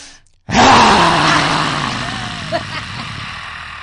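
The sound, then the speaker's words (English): A deep, guttural human growl bursts in after a short silence, loud and raspy with a low rumbling tone, sustained for a few seconds while slowly fading, made on an outward breath while pushing the hips forward with hands on hips as an exercise. “And then we're going to add the sound is a deep guttural growl.”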